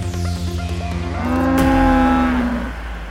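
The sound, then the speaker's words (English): A male pygmy cow, foraging for food, lets out one long, drawn-out moo, loud, rising into a strong bellow and fading toward the end, with no talking. “I was able to confirm that this was indeed a pygmy cow, a male, foraging for food, possibly looking, probably, I would hazard a guess, for discarded ready meals.”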